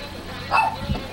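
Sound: dog barking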